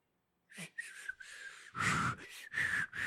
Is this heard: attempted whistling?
yes